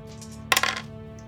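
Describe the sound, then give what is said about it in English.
Dice are rolled during a tabletop game and clatter across the table in one short burst of rattling clicks that quickly dies away, with only a faint steady hum around it and no one speaking. “And I'm rolling the dice.”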